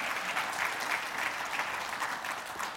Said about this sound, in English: It's okay to clap in church, and this is one worth clapping for. The last 12 months, there have been 204 of you that began giving for the very first time. Isn't that exciting, guys? Yeah, we can clap about that.